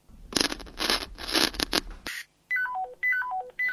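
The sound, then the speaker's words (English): A burst of scratchy, rustling noise gives way to radio phone dialing tones as someone tries to contact co-workers: two quick runs of clear electronic beeps, each stepping downward in pitch, fairly loud with no voices. “With the help of your radio phone, you try contacting your co-workers.”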